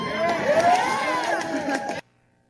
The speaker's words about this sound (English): I am not sad that a blanking fascist died tonight, and the crowd erupts into cheers.